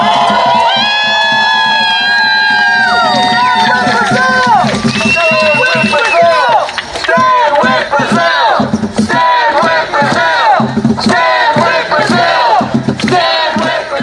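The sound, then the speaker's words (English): A loud rally crowd at a demonstration about the political threats facing Brazil cheers and whoops continuously, applauding themselves, many voices shouting over one another while steady clapping builds underneath and keeps going. “So let's give ourselves a round of applause.”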